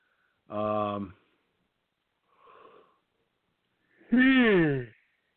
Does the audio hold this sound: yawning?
yes